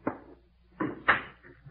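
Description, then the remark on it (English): The door of a sick man's room is pushed shut as a doctor enters: a soft knock, then two quick clunks as it swings closed and the latch catches, with no voices. “Close the door.”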